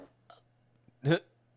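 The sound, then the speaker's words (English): A single loud, throaty burp erupts near the end after a couple of faint breathy sounds, short and resonant with a rising guttural rumble, with no talking. “just out here letting them loose. I'm very gassy.”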